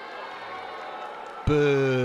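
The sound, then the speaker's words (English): A crowd boos Tom Perez as Bernie thanks him for his remarks; the low, sustained booing builds from a steady murmur, then a loud, droning boo swells suddenly and holds for the final half second. “He's getting booed.”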